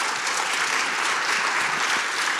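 An audience at a question-and-answer discussion claps steadily, a dense, even wash of applause filling the whole moment without pause, fairly loud, with no voices rising above it.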